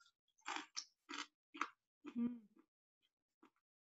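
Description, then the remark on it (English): Crunchy chewing as someone tastes homemade crunchy chewed dough cooked without added oil: about four crisp, crunchy bites in a steady rhythm, followed by a brief hummed voice sound and a few faint mouth clicks in quiet. “Okay, as you can see, it's crunchy, it's flavorful, it smells wonderful while it was cooking, and I'm going to try some and let you know how it tastes.”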